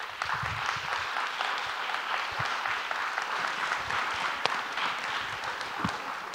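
A crowd applauds steadily for several seconds, a dense wash of many hands clapping at once with a few sharper claps standing out, fairly close and sustained without pause.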